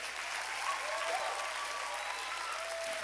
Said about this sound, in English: If you're gonna clap, clap onto God.